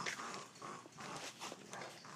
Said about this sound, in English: Oh, no. They're kind of growling at each other.